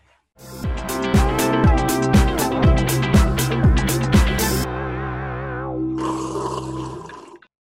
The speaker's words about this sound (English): Something about that slurp makes you want to have another cup, you know, another sip, doesn't it?